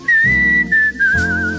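A person whistles a Christmas classic, a bright sustained tone with slight wavering pitch, over a soft instrumental backing track with low bass pulses; no one speaks. It is from a Delco Records Christmas release, promoted on radio station KJIL, of the station's news director whistling Christmas favorites.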